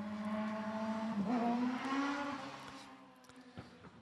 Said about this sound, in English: have competition from a guy on a racing bike. Anyway, that's a first for us here, too.